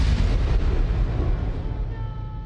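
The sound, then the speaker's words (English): Thunder from an approaching storm: a deep, continuous rolling rumble, loud and heavy in the low end, churning steadily and easing slightly toward the end, with no voices. “Storm coming, Mr.”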